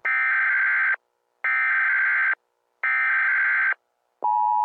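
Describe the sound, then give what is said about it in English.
An emergency alert test tone: three loud, harsh, buzzing electronic bursts about a second each with short gaps, then a steady, piercing alert tone begins. No one speaks. “This is a test of the emergency podcasting system.”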